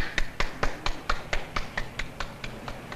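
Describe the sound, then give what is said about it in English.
A lone man claps steadily at the end of a speech in a video, about a dozen sharp, evenly spaced claps at a brisk pace with no other voices or applause joining in. “See, one guy was clapping at the end because everybody else in that group probably fell into one of those categories that he listed, a Freemason or a Catholic or whatever else.”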